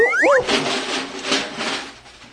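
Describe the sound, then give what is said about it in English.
An electric-powered coffee percolator of its owner's own design bubbles and hisses in loud, surging pulses, opening with a brief wavering squeal. No one speaks. “My goodness, I hear something bubbling.”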